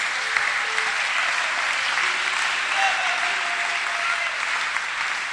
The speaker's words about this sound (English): Clap for Jesus, somebody.